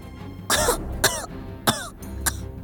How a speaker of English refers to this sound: Everyone looked around with apprehension, but then a coughing sound came from behind them. Little Thialfi was not doing well.